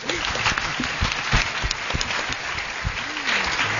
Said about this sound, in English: Oh, well, I think we'll give you a round of applause anyway.